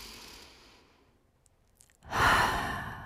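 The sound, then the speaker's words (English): A slow, deep, purposeful breath drawn in softly, a brief pause, then a louder, full exhale like a sigh, alone with no talking. “Take deep, purposeful breaths.”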